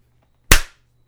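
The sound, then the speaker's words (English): One sharp, loud hand clap, made for audio sync, cracks out of near silence, a bright snap that rings briefly and fades within a quarter second over a faint low hum. “did you hear that time when I clapped?”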